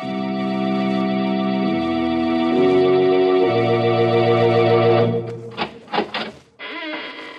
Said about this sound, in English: When you heard the sound of the squeaking door, it was exactly 30 seconds past the hour for murder.